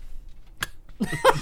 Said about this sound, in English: Burp into the mic.